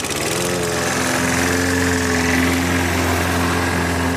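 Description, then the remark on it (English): A lawn mower engine runs steadily, a loud continuous buzzing drone with a rough, rattling edge that holds an even pitch throughout, with no voices; a volunteer mowing lawns for free for senior citizens and veterans in northern New Jersey. “Free lawn mowing for senior citizens and veterans in parts of northern New Jersey.”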